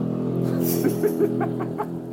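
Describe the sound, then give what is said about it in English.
A loud engine roars, a car or motorbike droning steadily with a throaty rumble and slight revving pulses as it drives past, filling the whole moment. “Some loud ass car on motorbike, man, just drove past.”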